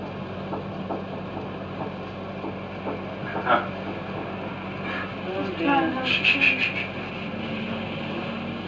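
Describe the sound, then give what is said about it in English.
A quick burst of rapid, repeated knocking in a house, a rattling run of sharp taps, rises briefly over a steady low hum and noisy background, with a few scattered knocks before it. “It's now doing the rat-tat-tat-tat-tat-tat.”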